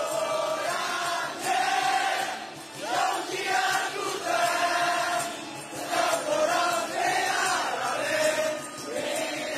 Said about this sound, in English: Okay, I see a few people singing into megaphones to a very large crowd. Tens of thousands, we think, in central Yangon.